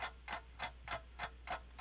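A 30-second countdown clock for a trivia game round ticks in a steady, even rhythm, six soft, crisp ticks about a third of a second apart, with no voices over a faint low hum.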